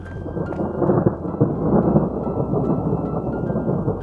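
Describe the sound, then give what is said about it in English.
Heavy rain, three-quarters of an inch of it, pours down steadily at an abandoned water tower, with a deep, continuous rumble of thunder underneath, a dense low roar that swells slightly mid-way, with no voices. “Look how much water we got. That's 3/4 of an inch of rain right there.”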